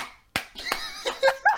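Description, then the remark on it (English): Several sharp hand claps land in a quick, running cadence, like slapping, imitating a man's butt cheeks clapping as he ran from guards, with brief voiced sounds or laughter mixed in toward the end. “holy shit, the clap of your cheeks alerted the guards.”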